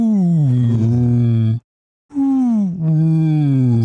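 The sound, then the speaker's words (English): A person imitates a creature call combining the huffing of a large animal and the hooting of an owl, likened to the sick Triceratops sound from Jurassic Park: two long, low, mournful hoots with a breathy, huffing groan quality. A brief pause separates them, and the pitch sags slightly as each one drags on. “but it is kind of a combination of the kind of huffing of a large animal and the hooting of an owl.”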